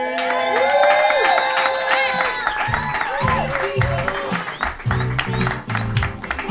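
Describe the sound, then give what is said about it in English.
At Alberta Street Pride, a crowd cheers and applauds loudly for the host of the evening, with high whoops and shouts rising over steady clapping throughout, a few voices calling out in the mix. “And Alberta Street Pride, please give it up for your host for the evening,”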